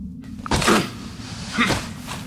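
Wasp nests being knocked down at an archaeological site: two rough, scraping knocks a second apart, fairly loud, over a low steady background hum with no voices.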